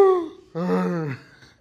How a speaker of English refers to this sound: That's my last voicemail. It's someone breathing into the voicemail.